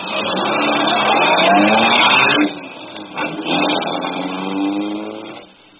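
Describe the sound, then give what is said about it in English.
A car engine turns over and revs loudly, its pitch climbing in surges, easing off briefly midway, then roaring up again before cutting away. No voices. “I grinned, put the letter opener inside my coat, closed the trunk, got the car started.”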